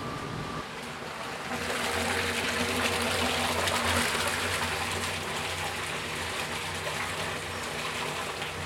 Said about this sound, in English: And I'm going to put another 100 liters of water in. what we call the batcher. And what it does, it batches 100 liters of water into the pot, hot water.